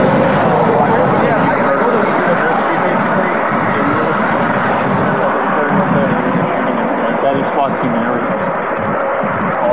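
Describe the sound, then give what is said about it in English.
A loud, steady roar of passing road traffic fills the whole stretch, dense and unbroken, with a muffled murmur of voices mixed faintly into the wash of noise. “okay, I'm having a hard time hearing you because of the traffic.”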